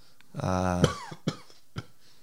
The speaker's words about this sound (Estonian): Tema köhib, mina ei köhi. Seda küll.